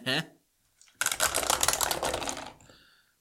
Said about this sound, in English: So let's just get some dice out here. I've got my big old basket of dice out.